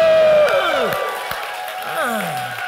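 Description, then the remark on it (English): The Hope Chapel church audience cheers and shouts loudly after being asked to make some noise, many voices whooping with rising and falling cries over a dense roar that eases slightly but keeps going throughout. “If you know that God is good all the time, let me hear you make some noise.”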